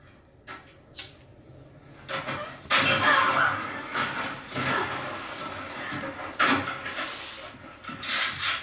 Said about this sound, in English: Trap door bitches.